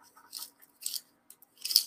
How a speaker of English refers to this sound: It has a little pencil sharpener. Let's sharpen some pencils and see if it works. Sharpen a pencil here.